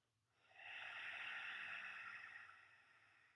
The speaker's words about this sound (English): And then exhale with an ocean sound through your nose.